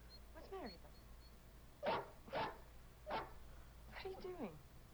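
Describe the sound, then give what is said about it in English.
A frightened female dog whines in wavering, high-pitched whimpers, breaks into three sharp barks, then whimpers again, over a low steady hum. “Meanwhile, the dog sees a hole with, like, demons, like, roar! It's freaking her out.”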